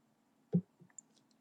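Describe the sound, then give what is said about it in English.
A sharp computer mouse click, made while clicking on a class, followed by two fainter clicks a moment later, over a low, steady background hum with no talking. “I'm clicking on the class real quick because I've got to figure”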